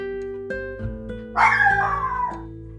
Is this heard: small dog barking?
yes